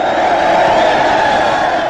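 A loud, steady wash of crowd applause and cheering fills the whole two seconds, dense and continuous with no pauses and no one speaking.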